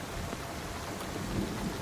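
Steady rain hisses throughout during a storm, joined near the end by a low, swelling rumble of thunder, with no voices present.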